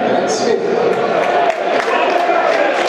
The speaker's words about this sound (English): Claps and applause for that move.